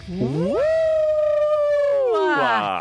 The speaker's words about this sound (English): I gotta tell you, I'm not sure how I feel about all the people wooing with me the upcoming whiz. I really enjoyed the wooing. Did you enjoy the wooing? The wooing is my favorite part of the show.